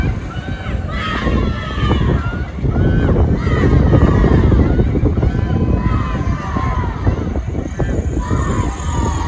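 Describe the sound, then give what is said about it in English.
A protest crowd of about two dozen at Port-au-Jemaine, around 11:45 p.m., yells to search the landfill and cheers continuously, many voices overlapping in loud, rising shouts over a steady rumble of noise, with some horns honking. “And then there were cheers and some horns honking.”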